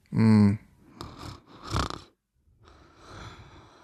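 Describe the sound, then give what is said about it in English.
A voice imitates a woman's light snore: a short buzzing hum, then two breathy snorting inhales and a softer, airy exhale trailing off. “She has a very sweet light snore.”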